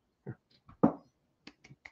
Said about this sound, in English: This is not a sarcastic clap. It's just hard to make one person clapping sound authentic.